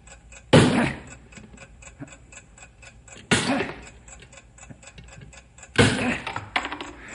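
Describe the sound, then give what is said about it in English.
A bomb's timing device, set between the chemical chamber and the explosive, ticks steadily and quickly throughout, its sharp clicks clear, interrupted three times by loud, harsh bursts of noise that briefly swamp the ticking. “I can still hear the ticking”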